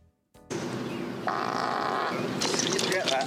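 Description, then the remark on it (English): A golfer's low, sputtering fart as he hits the ball, rumbling for a few seconds against a steady wash of outdoor background noise, with faint voices in the mix. “Oh, that's a real fart. That's him. He hits the ball and he farts.”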